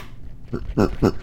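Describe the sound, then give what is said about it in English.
A neon pink toy cow named Max lets out a short laugh, three quick bouncy voiced bursts in a row, fairly loud, with nothing else around it. “He laughs.”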